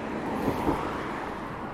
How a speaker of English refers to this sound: Let's see, now I have to cross this busy road here in order to go into the woods.